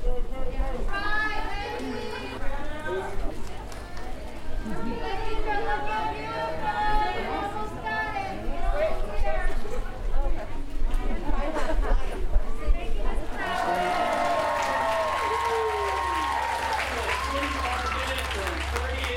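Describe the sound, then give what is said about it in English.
A crowd cheers and calls out compliments and encouragement to contestants completing a timed butchering contest, over a steady babble of voices, with bursts of applause and overlapping shouts; the noise swells into a louder, brighter roar of clapping and whoops near the end. “While the contestants completed each timed step of the butchering process, the crowd cheered and threw out compliments and words of encouragement.”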